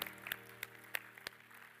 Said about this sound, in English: Let's clap our hands to the Lord together.